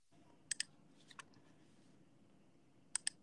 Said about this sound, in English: Who's typing away? That's me.